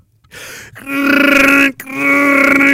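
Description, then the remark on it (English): A voice imitates computer noises: a short raspy burst, then two long, steady, buzzy droning tones with a slight warble, separated by a brief break, fairly loud and alone. “He is making mockery computer sound noises.”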